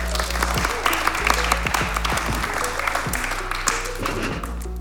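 Sustained audience applause welcoming a guest, a dense steady patter of many hands clapping at even loudness throughout, with no talking over it.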